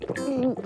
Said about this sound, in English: Spotty Dinosaur gave Hasty a glass of warm water. Hasty drank the water quickly.